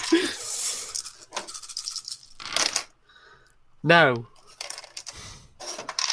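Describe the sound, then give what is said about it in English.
Three dice rattle and clatter in a few quick bursts, a shake followed by tumbling rolls for a strength and luck roll, with a person speaking briefly in the middle. “In fact, roll me a strength and brawl, would you? Oh, strength and luck. 3 dice.”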